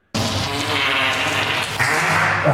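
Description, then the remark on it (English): A single long, buzzy fart noise played on a live stream for Fart Noise Friday, starting abruptly and rasping on steadily for over two seconds, fairly loud, with a slight wavering pitch and no talking over it. “I thought I'd... that I'd chat the live stream for once to celebrate Fart Noise Friday.”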